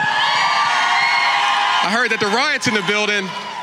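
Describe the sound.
A loud crowd in Jacksonville roars and shouts together, then a voice lets out several rising and falling whoops and yells over the continuing din of the audience.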